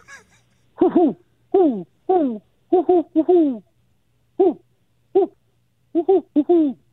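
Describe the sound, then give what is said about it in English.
A person imitates a great horned owl call, voicing a fairly loud series of deep hoots in short irregular bursts, some paired, with brief pauses between them, following the pattern 'Who cooks for you?' “I'm going to do my best to do a great horned owl call here”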